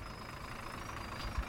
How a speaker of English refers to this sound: Oh, thank God the bus is here. I am freezing.